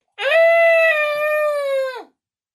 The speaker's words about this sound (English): that is the worst friggin' instrument. That sounds like someone's screaming.